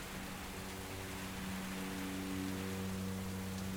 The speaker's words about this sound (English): The rain continues.